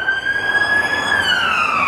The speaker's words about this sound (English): I'll let this ambulance go by.